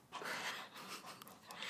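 A male dog pants rapidly and steadily, a continuous breathy huffing rhythm with no voices over it.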